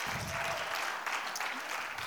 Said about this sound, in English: And everybody says, amen. Amen. Come on, give God a great clap offering. Amen.